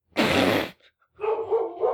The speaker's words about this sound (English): Your dog does not approve. My dogs... No, they don't. They don't like it.